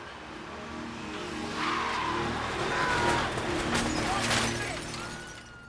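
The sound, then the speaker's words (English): A car roars by with screeching tires, then broad bursts of impact noise hit around the middle as the car strikes a person. The engine drone continues steadily underneath. “the scene on his follow-up project, …, that literally has the main character get hit by a car”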